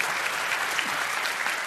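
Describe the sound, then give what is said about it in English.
An audience applauds Ian Bremmer in a dense, steady wash of many hands clapping, holding an even loudness throughout with no voices over it. “You can applaud Ian Bremmer when he finishes.”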